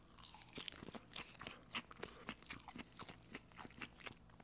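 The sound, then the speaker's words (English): Crunchy chewing of a juicy, salty salad with cauliflower and broccoli patties, a quick, steady run of crisp bites and crunches, fairly quiet, with no talking. “Some salads can really turn you ravenous, and this one is so juicy and salty and crunchy, has everything you want. I'm going a little berserk on this boy here.”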